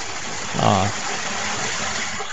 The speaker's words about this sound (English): somebody flushed a toilet.